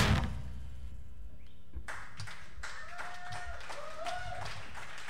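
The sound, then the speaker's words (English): After a brief low rumble, a crowd breaks into dense, irregular clapping that keeps going steadily, with a few faint high whistle-like tones rising through the applause. “I know you're really excited and you want to clap, but you got to keep two hands on the wheel, okay?”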